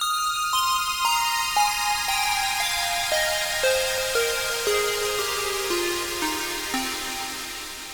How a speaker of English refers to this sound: And I made it from a square wave patch in Serum running through Valhalla Shimmer.